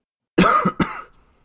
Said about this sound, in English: I'm sick. I'm sorry, everybody. This is not supposed to be coughing into the microphone ASMR. I'm not even that sick. It's just a tickly throat.